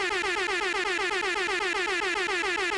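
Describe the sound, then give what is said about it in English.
A loud, brassy air horn blares for nearly three seconds, its blast stuttering in rapid, evenly pulsing bursts, piercing, with no one talking over it. “I was told on our last episode I did too many air horns, so this one's for you.”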